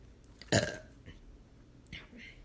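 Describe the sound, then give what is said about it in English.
A loud burp erupts suddenly, followed by a short, softer vocal sound moments later, with quiet room tone around it and no speech. “I just burped.”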